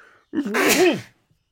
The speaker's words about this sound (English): Hang on, I'm going to sneeze now. Everything's coming out.